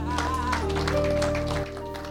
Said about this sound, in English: Clap for the Lord Jesus.